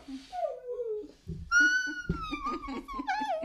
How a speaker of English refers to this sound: She's a talker. Oh my gosh. We should just interview a husky.